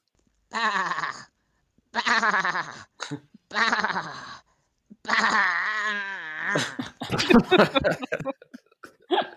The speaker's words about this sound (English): A horse having an aneurysm or what? It was a sheep, I think. Yeah. Is it? But yeah, I think it might have been having an aneurysm.